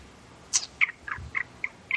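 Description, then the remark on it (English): Loud keyboard typing: about six sharp, clacky keystrokes in an uneven rhythm, each a crisp bright tap over quiet background, with no voices. “Let me type on my loud keyboard here for a second.”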